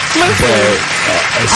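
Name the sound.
applause sound effect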